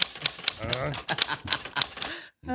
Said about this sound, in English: Oh, the typewriter derailed it.